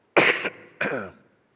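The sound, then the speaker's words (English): Two sharp coughs into a hand in quick succession, the second trailing off slightly rougher, with no talking around them. “Yes, I coughed into my hand and not my elbow.”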